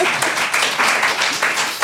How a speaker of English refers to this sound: Round of applause for warlords.